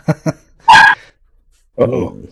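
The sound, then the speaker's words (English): A dog lets out two quick short barks, then a louder, higher-pitched bark; after a brief pause, a person starts talking. “The dog said, "Get the hell off that computer."”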